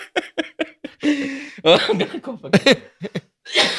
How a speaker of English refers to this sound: Cough break. Holy smokes.